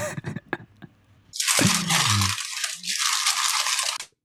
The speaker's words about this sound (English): Bag of what? Chips. Yeah, was that a bag of chips? It sounded like a bag of chips, or it was just somebody crumbling up paper.